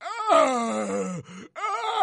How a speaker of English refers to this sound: Just making these grunts and these noises. It's like, really, dude? And it goes on for like 20 seconds.